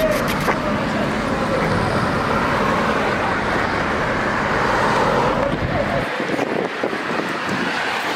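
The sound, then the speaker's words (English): Loud street traffic rumbles steadily as cars roar past while someone tries to cross the road, a continuous wash of engine and tire noise that thins slightly in the low end near the end. “Almost got hit by a car.”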